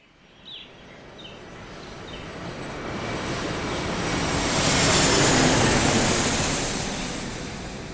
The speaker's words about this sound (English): led them to the private jet that also doubled as the attacker jet when needed. For now, it was just his normal personal aircraft.